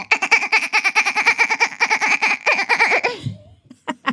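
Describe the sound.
A person imitates a dolphin with a fast, high-pitched squeaky chatter of rapid pulses lasting about three seconds, ending in a low grunt and a couple of short clicks.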